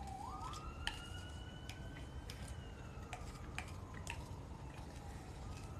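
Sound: ambulance siren passing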